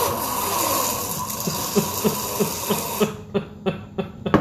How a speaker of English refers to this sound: Pause for obnoxiously loud water sip.